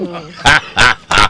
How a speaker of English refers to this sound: We got the donkey.